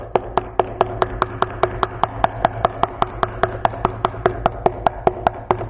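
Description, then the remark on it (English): Knuckles rap on a hard surface again and again, about four sharp knocks per second in a steady, unbroken rhythm, over a low constant hum with no talking. “I'm going to get a bloody knuckle if I keep doing that. But you'll keep knocking.”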